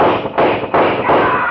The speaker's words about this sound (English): Kum Ji Ho let go with 4 wild shots. Lou Doc whirled, covering his brother at the same time, whipping out a gun and firing.